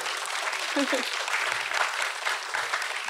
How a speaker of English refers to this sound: Thank you both so much. Can we give them a round of applause for joining us?